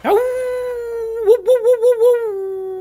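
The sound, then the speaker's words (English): A dog in a park lets out a long howl that swoops up, holds steady, then breaks into a wavering, whimpering warble before trailing off. No one speaks. “You want to come and talk to my dog?”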